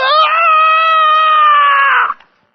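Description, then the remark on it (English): A voice imitates the distressed scream of a boy on a bike who could not stop: one loud, sustained high-pitched wail held for about two seconds at a steady pitch, then cut off abruptly into silence. “But we heard this scream that did not sound like a joyful scream.”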